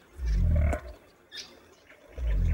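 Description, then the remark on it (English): Two deep, rumbling pig-like grunts from a southern cassowary, the largest bird on the continent, on the forest floor. The grunts are loud and separated by a short pause, with faint bird chirps in the forest background. “While pig-like grunting on the forest floor tells us we're in the company of the largest bird on the continent, the southern cassowary.”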